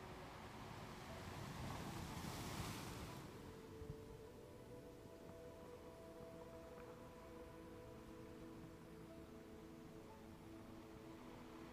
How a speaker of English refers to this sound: That image slowly fading itself, bringing you back to the black sands. The ocean waves, the warmth from the earth,